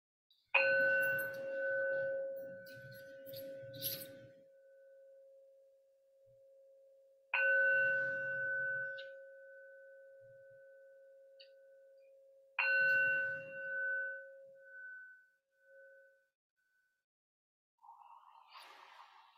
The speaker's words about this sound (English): Sounds inside the room. The bell.